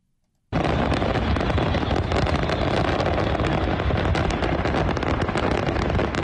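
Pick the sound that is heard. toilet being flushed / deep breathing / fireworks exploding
fireworks exploding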